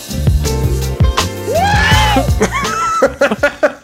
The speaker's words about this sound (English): Can we end with his Howard Dean scream at it's the last vocalization on this album